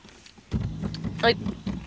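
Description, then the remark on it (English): A chair being moved shifts with a low scraping rumble, then gives a short, wavering creak midway through, fairly loud, sounding broken. “Like, ASMR. Keep moving the chair.”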